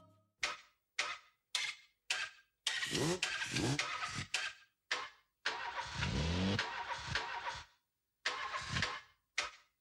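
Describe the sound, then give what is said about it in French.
A car engine cranks in short repeated bursts, sputters and catches briefly, then cuts out and cranks again several times, with no voices present. The sound of cars stalling and restarting is used as a sample in a 1984 music track. “titre où l'on va retrouver des bruits de marteaux, de tronçonneuses, de voitures qui calent et redémarrent entre autres.”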